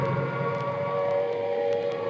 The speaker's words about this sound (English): This is Trafalgar Square. The noise that you hear at the moment is the sound of the air raid sirens. I'm standing here just on the steps of St. Martin's in the Fields.